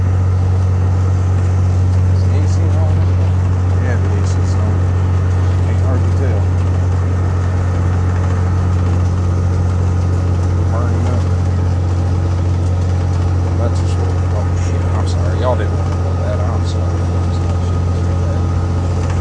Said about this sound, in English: It is a little bit warm in here, and you know, I apologize for the noise, some of y'all can't handle it, but at the same time, I'm really not sorry. I love the sounds of the jigs on this. I love the way the truck runs,